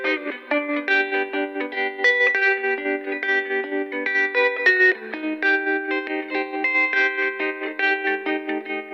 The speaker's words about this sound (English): The guitar came late in the game. It's a little more shaded. It's not straight up happy. That tremolo sound always has a kind of a nice moody effect, a little sadder or bittersweet or something, and I wanted that very much to be in there as well.